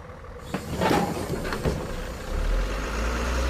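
A bus engine rumbles at a steady idle, its low drone growing heavier toward the end, with a few brief clunks and rattles over the top and no voices.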